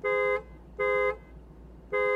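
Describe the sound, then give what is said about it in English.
The horn of a 2021 Lexus LC500 convertible honks three times in short bursts, each a rich, steady harmonic tone with an irregular gap between them, loud against a low background rumble. “Now let's hear how the horn sounds on the 2021 Lexus LC500 convertible.”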